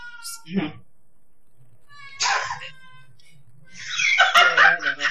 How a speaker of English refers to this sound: That's Madeline, my cat. I legitimately thought it was a small child. And I was like, are you babysitting someone?